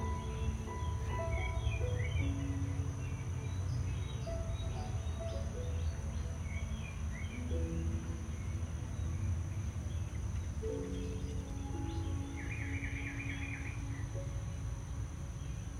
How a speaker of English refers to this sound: Begin to enter this moment and listen to the sounds around you. Sounds of the music, the sounds of the birds.